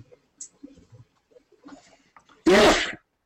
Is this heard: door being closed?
no